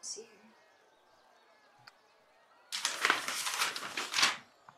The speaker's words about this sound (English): I love the sound of the shuffling papers. Welcome to my shuffling Welcome to my ASMR shuffling papers.